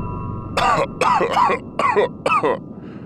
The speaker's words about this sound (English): Why am I coughing? That is such a ridiculous personality trait. There's absolutely no reason for a spaceship to cough when coming back online.